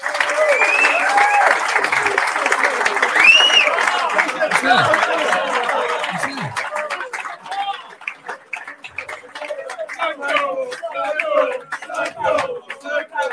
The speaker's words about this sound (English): Well, let's welcome our legends on. Let's give it a big round of applause then for the 4 guys that you want to hear from.